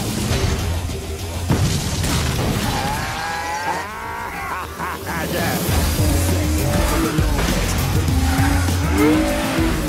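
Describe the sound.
Car tires screech and squeal repeatedly over a loud, roaring engine during a fast chase, with shouting voices mixed in and the skidding sounds rising and falling in pitch.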